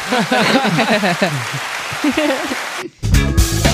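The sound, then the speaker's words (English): People talk in a studio for a few seconds, a brief pause, then a loud burst of canned applause from a sound-effect button kicks in, dense crackling clapping that fills the last second. “You have an applause button, but okay.”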